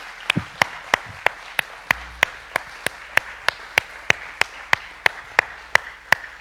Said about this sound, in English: So if we could give her a round of applause.